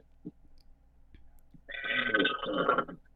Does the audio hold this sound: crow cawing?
no